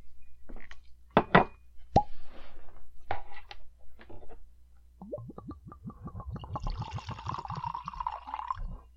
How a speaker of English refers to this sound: I'm just going to pour us some scotch so that, you know, we will get vastly more appropriate.